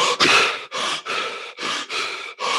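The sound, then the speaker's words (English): Rapid, forceful over-breathing in the manner of the Wim Hof method without breath retention: six loud, breathy inhale-exhale bursts in quick succession, each separated by a brief dip, with no talking. “So it was basically the Wim Hof method without the breath retention for 28 hours.”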